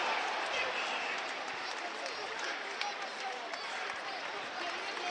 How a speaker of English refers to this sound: And a terrible round of applause at the end. It's a trickle of applause. It sounds like when I'm pushing out last dregs of piss.